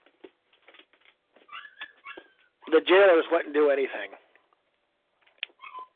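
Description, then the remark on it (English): A puppy whimpers and cries in thin, high-pitched whines, a few short cries before and after a person talks, fairly soft. “Is there something wrong with your dog?”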